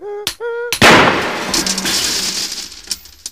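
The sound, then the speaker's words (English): Two short rising tonal notes lead into a single loud blow of a doctor's hammer, struck to free objects wedged in a boy's nose, bursting into a crashing, glassy shatter, its clatter fading over a couple of seconds. No one speaks. “Hand me that hammer.”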